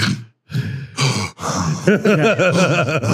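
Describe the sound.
A voice imitates heavy, congested breathing: a few rasping gasps and wheezy inhales and exhales, fairly loud, ending in a rapid run of strained, croaky breaths.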